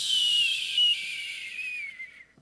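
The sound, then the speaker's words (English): A person imitates an eagle's scream with one long, shrill, piercing cry that holds high and slowly slides downward for about two seconds before cutting off. No one speaks. “It's my best eagle scream.”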